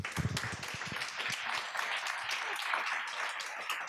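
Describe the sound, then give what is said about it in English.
A crowd at a design panel event at IBM in Hong Kong applauds a panelist steadily, dense overlapping claps for several seconds at an even, sustained level with a few louder bursts at the start. “Please, round of applause, audience”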